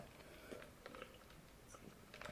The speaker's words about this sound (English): Oh, I can hear the chewing. Oh. This is like ASMR. Let's do an ASMR vid for just chicken nugget. We'll call it chicken nugget chewing.